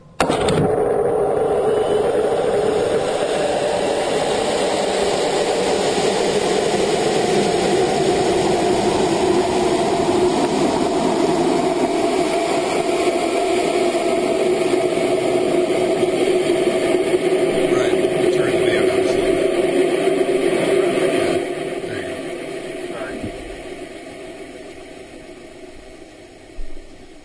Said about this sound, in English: Thought you guys wanted to hear it really loud. It's an amateur rocket? Yep. Holy cow.